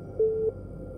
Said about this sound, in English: Then the call waiting signal beeped, and that little red light on the phone cradle started blinking.